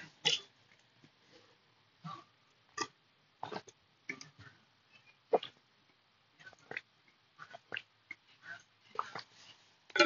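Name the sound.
gulping water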